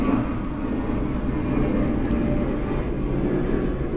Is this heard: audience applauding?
no